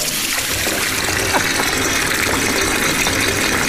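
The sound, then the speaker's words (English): A tap runs steadily, a constant rush of pouring water with a slight splashing texture, unbroken and even in loudness from start to finish, with no voices. “There's Leaving a Tap Running.”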